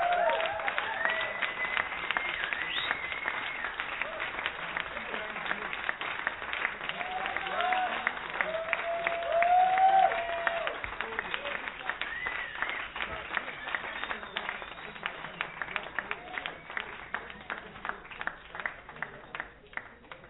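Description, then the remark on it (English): Audience applause fills the whole stretch, a dense steady patter of many hands with scattered cheers and voices mixed in, swelling briefly midway before gradually thinning out toward the end. “Well, now we applaud today, but you can imagine the variety of reactions, right?”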